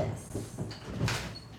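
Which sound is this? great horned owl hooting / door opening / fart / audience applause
door opening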